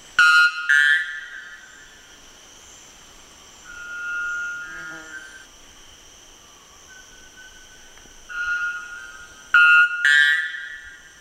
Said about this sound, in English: That bird, of course, is the white bellbird.